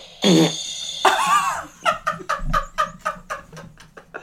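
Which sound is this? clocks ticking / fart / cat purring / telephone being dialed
fart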